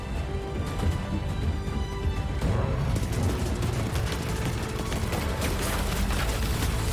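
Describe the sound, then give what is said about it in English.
A dense, continuous barrage of booming explosions and rapid gunfire in a video game trailer, loud, with the bursts growing busier and sharper partway through. No voices can be heard. “It's running out of explosions.”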